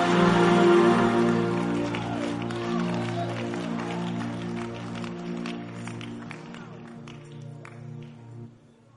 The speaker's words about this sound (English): By the time you leave this camp, all the plans you have, which are not of God, which are not designed by God, clap your hands and say, flash out! Flash out! Flash out! Flash!